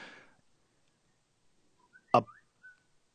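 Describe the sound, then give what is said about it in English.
A phone ringtone of a few quick, high whistle chirps, short and rising, with a sharp knock in the middle, fairly quiet against silence and no talking. “What was the whistle?”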